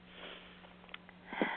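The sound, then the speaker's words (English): A short, soft nasal inhale with faint airy hiss, ending in a slightly louder sniff-like intake; a steady low hum runs underneath and no one speaks. “Nice breath in.”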